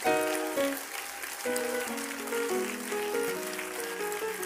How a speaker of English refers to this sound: Clap your hands to the Lord and give him praise.